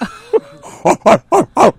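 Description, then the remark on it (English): A person imitates a gorilla with four loud, evenly spaced barking grunts in quick rhythm, after a couple of softer vocal noises. “Are you going to be barking like a gorilla?”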